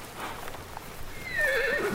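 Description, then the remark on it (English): A horse lets out a loud, wavering whinny that rises and trembles over the last half-second, after a stretch of soft shuffling and faint hoof clops. “Stay back, horse. We need to get away from this psycho horse.”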